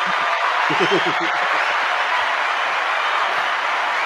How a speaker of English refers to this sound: Congratulations. Congrats. Everybody, can we just get him a round of applause, please?